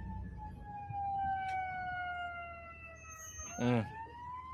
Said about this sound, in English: And obviously you can see like we hear the sirens everywhere